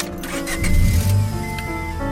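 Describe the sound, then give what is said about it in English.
A car driven by a woman, in motion, its engine giving a steady low rumble with a faint whining tone, heard for a couple of seconds with no talking. “So his girlfriend is driving her car.”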